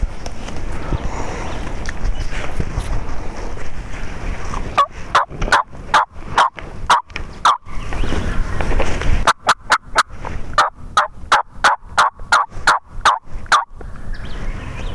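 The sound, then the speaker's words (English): Wild turkeys gobble outdoors in a creek bottom during a turkey hunt, in two long, loud bursts of rapid, rattling pulses. A stretch of rustling, breezy background noise comes first, and no one speaks. “I circled way around them and came in on the other side of them. And here's where our audio picks up.”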